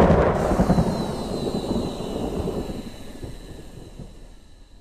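A loud crack of thunder breaks suddenly and rolls into a long, rumbling roar that slowly fades over several seconds, with no voices.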